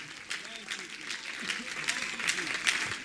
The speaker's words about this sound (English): Oh, if you want that, you ought to clap your hands and you ought to lift your voice right now. Come on. Come on, somebody clap your hands and lift your voice to the Lord right now.